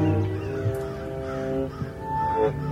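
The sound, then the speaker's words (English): A flock of red-winged blackbirds on a barbed wire fence behind hay bales calls in a steady, overlapping chorus of harsh, buzzy notes, moderately loud, with no one talking. “A flock of red-winged blackbirds on the barbed wire fence behind the hay bales.”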